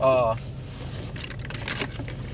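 Police cars pass by outside, opening with a short loud tonal blare like a siren or horn, then a steady rumble of traffic noise with a low hum underneath.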